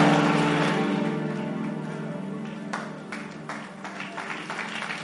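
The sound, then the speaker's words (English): An audience claps together at the preacher's call during a sermon, in a dense, noisy burst that gradually thins out, with a steady musical drone underneath and a few scattered claps near the end. “Clap your hands and say, devil, get away from behind me.”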